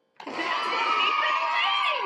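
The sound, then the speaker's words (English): A soundboard crowd cheering sound effect kicks in abruptly and holds at a steady, loud level, a dense wash of many voices shouting and whooping together for about two seconds. “We got a cheer, we got an explosion, and we got that's what we've been waiting for.”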